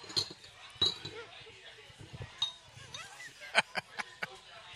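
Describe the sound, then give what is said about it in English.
Shot glasses of Fireball whiskey clink together in a toast at a bar, a few bright ringing taps spread out and then a quick cluster of clinks near the end, with faint background chatter. “Cheers.”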